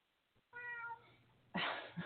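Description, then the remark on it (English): A cat meows in a studio, a drawn-out tonal cry followed by a louder, harsher burst and a short final yowl, all heard alone. “I have a farm here, don't I? Cats and dogs and all sorts of things. That's just my studio.”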